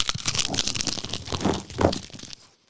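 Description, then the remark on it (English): Someone bites into a big hunk of crispy fried chicken, fried a little hard, a dense burst of crackly, crunching noises for a couple of seconds, a few louder crunches near the end, then silence. No one speaks. “We need a bite. Can you do a bite right now?”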